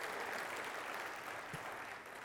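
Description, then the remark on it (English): An audience applauds for mothers on Mother's Day, clapping steadily for a couple of seconds, a dense, even wash of many hands clapping at once with no voices standing out. “Let's give a round of applause to our mothers.”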